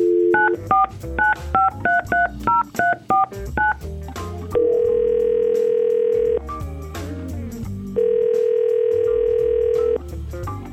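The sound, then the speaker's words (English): A rapid run of telephone keypad beeps as a number is dialed, followed by two long, steady ringing tones separated by a pause. The tones are clear, with no talking. “try to call Adrian and see if we can get her on the phone”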